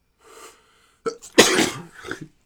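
A quiet breathy intake, a short catch, then one loud, explosive sneeze, trailing off into a brief exhale. No talking around it.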